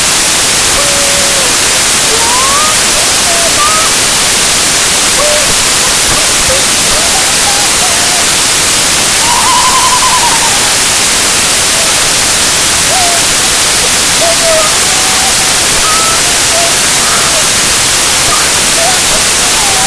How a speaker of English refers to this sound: Something incredibly strange just happened there. All our screens just went to white noise, and, you know, some people claim they heard voices